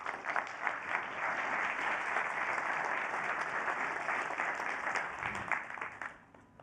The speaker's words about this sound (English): Please, a warm applause.